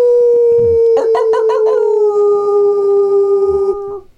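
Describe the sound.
A loud, sustained wolf howl holds one steady pitch for about four seconds, with a rough, wavering burst partway through before it fades out at the end.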